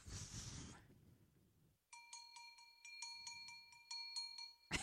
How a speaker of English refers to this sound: Sounded like 17 bells.